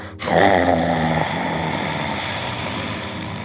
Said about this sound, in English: And then the bear roars as loud as it can.